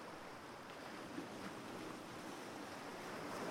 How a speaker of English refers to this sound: In the twisting streets of Karavi, a breeze whispers insistently, beguilingly, sharing news of the rolling sea.